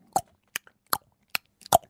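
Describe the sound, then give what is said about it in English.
A person imitates a ticking clock with their mouth: five sharp, crisp tongue clicks at a steady, rather slow pace, with no talking in between. “That sounds more indicator than clock noise.”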